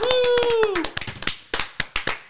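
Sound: people clapping hands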